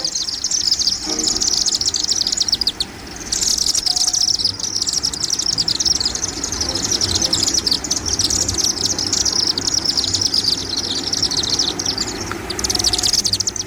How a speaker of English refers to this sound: Chimney swifts are wonderful to watch and almost as beautiful to listen to with their excited twittering and chirping like this.